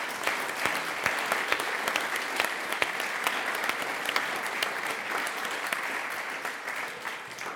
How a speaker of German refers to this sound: Ja, ich glaube, das ist ein Applaus wert.